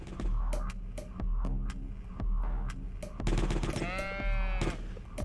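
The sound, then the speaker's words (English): A single wavering sheep bleat rises near the end, set against repeated sharp gunfire-like cracks and a steady low throbbing rumble, with no talking. “Sheep.”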